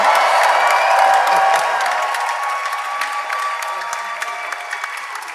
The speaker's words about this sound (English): Oh, clap and scream.